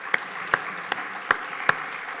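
Five sharp hand claps land in a slow, steady rhythm about half a second apart, crisp and fairly loud over a faint background hiss, with no voices, clapped to celebrate a man who had been very sick.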